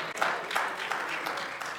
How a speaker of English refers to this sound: And you all are applauding, but he's already requested.